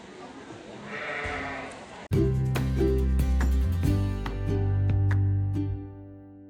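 A sheep bleats loudly in long, wavering cries after a brief stretch of soft background noise, the bleating continuing for several seconds before trailing off.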